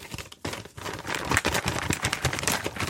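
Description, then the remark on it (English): Continuous tearing and crinkling of paper, with repeated ripping bursts and rustling over about three seconds and no voices. “I'm ripping this paper into shreds.”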